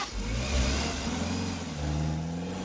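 A BMW Z3 sports car engine revs loudly, its deep growl rising and dipping in pitch over a couple of seconds, with no talking.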